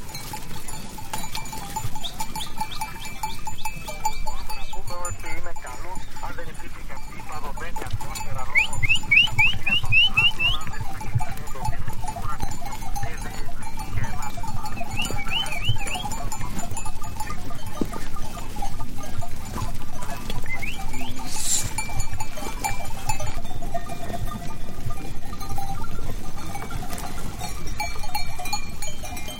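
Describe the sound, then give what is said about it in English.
Sheep and goats bleat on and off over a steady, dense clatter of clanking bells at a winter festival in Greek Macedonia, with a few short high chirps mixed in. No one speaks. “These and other sounds can be heard on his CD, ….”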